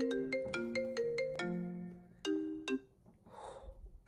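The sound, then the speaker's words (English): A phone ringtone for an incoming call plays a quick melodic tune of bright electronic notes, loud, running a few seconds before stopping, with no one speaking over it. “I got a phone call during that.”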